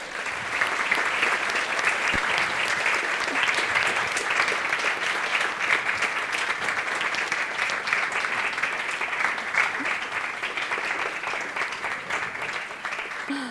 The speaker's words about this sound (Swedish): Så jag tycker vi välkomnar honom och gästerna med en varm applåd.